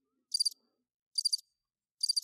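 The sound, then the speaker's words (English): Three evenly spaced bursts of high, buzzy cricket chirping, a sound effect played from a Rodecaster, each a quick trill of pulses, with silence in between. The chirps are clear and isolated, with no voices present. “There's also crickets when I make a bad joke.”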